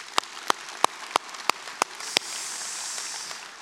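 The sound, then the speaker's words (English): Audience applause for first-time guests at an Easter Sunday church service: seven sharp, evenly spaced claps ring out first, then a steady wash of many hands clapping together takes over, no voices heard. “Before we get started anymore, can we just give all of our first-time guests a round of applause?”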